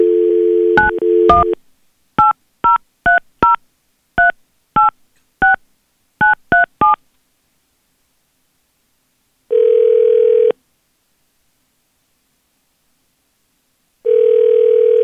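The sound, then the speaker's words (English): A phone line's dial tone gives way to a quick series of touch-tone beeps as a number is dialed, then two long, steady ringback tones sound with gaps of silence between them. No one speaks. The call is placed live on the radio station B93.7. “Well, we're going to call her and see if she'll answer for us.”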